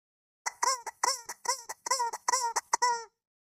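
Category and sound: bird, guinea fowl calling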